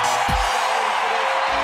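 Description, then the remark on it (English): A big arena crowd roars and cheers in a loud, sustained wash of noise after Tyrese Hunter stuffs a right-handed dunk on a run out, with a couple of low thumps underneath. “Stuffed it with the right hand. Listen to this crowd.”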